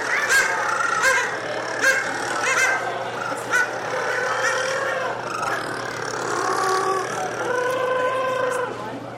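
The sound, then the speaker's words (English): A dense chorus of rockhopper penguins in a colony calling over one another, with harsh, braying honks and nasal, harmonic squawks rising and falling in overlapping waves, loud and continuous throughout. “You go to a penguin colony, it's like combines the ambience of a heavy metal rock concert in a cow barn.”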